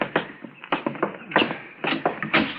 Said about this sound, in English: Here, I'll get the door.